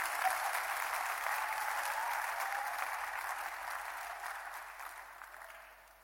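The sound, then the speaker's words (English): An audience claps their hands in a dense, steady burst of applause that holds for several seconds, then gradually thins and fades toward the end. No one speaks over it. “Somebody clap your hands before I say worse things.”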